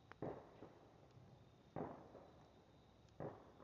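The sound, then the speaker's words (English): Three muffled booms of fireworks go off, spaced about a second and a half apart, each with a short rumbling tail over a quiet background hiss. “There's another reason why I don't believe fireworks should be shot off every other holiday of the year.”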